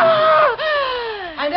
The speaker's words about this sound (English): What happened? Why did you scream?